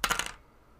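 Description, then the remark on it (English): A hundred-sided die, rolled to see how good a car is, clatters across a hard surface in a quick burst of bright, rattling clicks lasting about a third of a second, then falls silent, landing on 54. “I'm gonna roll a D100 to see how good of a car you have.”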